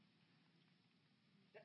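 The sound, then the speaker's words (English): After a stretch of quiet, a sudden loud sneeze bursts out at the very end, sharp and brief, from someone in the audience. “God bless you.”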